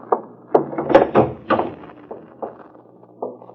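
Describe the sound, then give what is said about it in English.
A back door latch, leading from the kitchen and latched from the inside, rattles and clunks as someone tries it, with several short, irregular knocks of wood and metal, moderately loud, and no voices. “Well, latch from the inside.”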